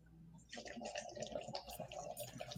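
Steady gurgling of air being blown through a little water in a breathing trainer device from Russia, a continuous burble of bubbles that starts after a brief pause and runs for about two seconds.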